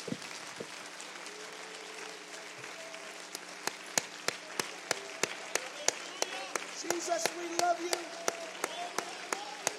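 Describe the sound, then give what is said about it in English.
An audience claps hands in sustained applause in praise of the Lord, a dense wash of clapping punctuated by sharper, louder individual claps, with faint voices calling out underneath. “Give the Lord a great big hand clap of praise.”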